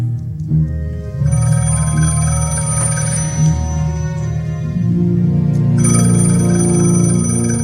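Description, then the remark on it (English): A telephone rings insistently with a loud electronic trill that sustains for several seconds, shifting pitch slightly partway through, with no voices. “Pick up your phone and call the professionals. I'm surprised the number's still in service.”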